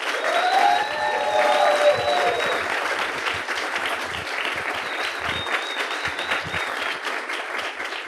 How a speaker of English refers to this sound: And I'm very pleased this weekend, as last year during Mises U, to be joined by the founder, chairman of the Mises Institute. Please, a round of applause for Mr. Lew Rockwell.